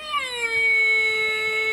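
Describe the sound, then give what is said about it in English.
A voice imitates a race car engine as if hitting the gas when the green flag drops: a single loud, buzzy, high-pitched drone that dips slightly at the start, then holds steady for nearly two seconds. “So I would go hit the gas, and I would go.”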